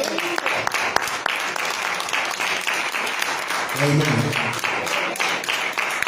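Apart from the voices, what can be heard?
audience clapping hands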